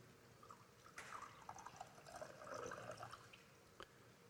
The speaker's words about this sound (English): In like manner, he took the wine and he poured it out. You just pour it out.